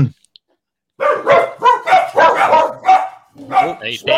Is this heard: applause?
no